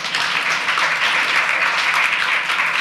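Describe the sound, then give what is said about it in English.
A crowd applauds steadily, a dense, even wash of many hands clapping at once, loud and sustained for a few seconds without any talking. “If real estate troubles resonated with you, if moving troubles resonated with you, if any of this sort of resonated with you, give us a little applause here.”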